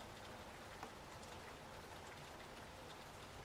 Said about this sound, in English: She even lowered her hood so she could hear better, the rain beating on her ponytail and across her freckled nose.